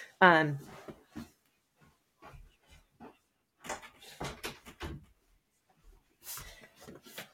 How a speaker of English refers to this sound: I need to close my door so that I can really say this. Wow, I'm realizing something. One second, I'm going to close this door.